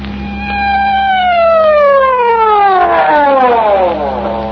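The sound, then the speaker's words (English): A loud siren wails with a long downward-sliding tone, then starts rising again, over a steady low engine hum with no voices, from a vehicle turning at Pine Street on a remote road, heading to where somebody was hurt. “Well, why the siren?”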